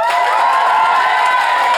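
studio audience applause

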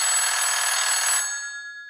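telephone ringing

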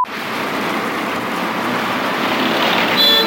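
passing car traffic

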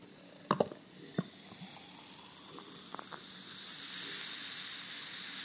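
beer being poured

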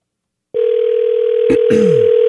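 phone call ringing tone

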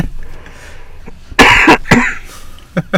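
coughing

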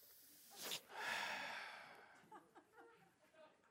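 sniffling nose

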